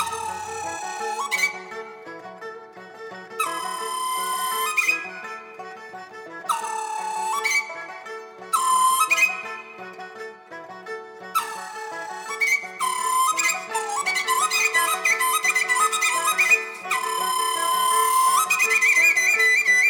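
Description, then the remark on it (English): Instrumental music from the piece Birds Among Tree Shadows, where high, whistling melodic lines realistically imitate Chinese bird calls in repeated chirping phrases and trills, over a steady lower accompaniment. It plays continuously and fairly loud, with no voices. “It's called Birds Among Tree Shadows and features realistic depictions of Chinese bird sounds.”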